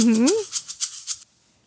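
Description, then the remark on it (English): A brief sliding vocal sound gives way to maracas shaking in a quick, steady rhythm of about half a dozen crisp, rattling bursts, fairly loud, before stopping abruptly. “Oh, you like a mamaracas?”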